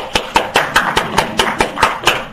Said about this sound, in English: And ladies, I think I personally need to clap hands for you alone, because I know what it means for you sitting there. Well done.